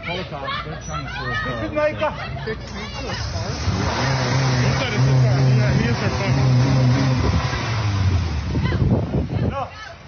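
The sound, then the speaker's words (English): A car engine revs and roars, surging loudly for several seconds while agitated voices talk and shout over it amid street noise, as two girls hijack an Uber Eats driver's car. “Okay, so what happened after, so those two girls hijacked this Uber Eats driver's car.”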